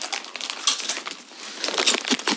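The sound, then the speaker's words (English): Someone munching on crunchy snacks right at a microphone, a steady run of dry, crackly crunches and crinkles at an irregular pace, fairly loud with no talking. “Are you anyway, going to be just bare munching behind a mic,”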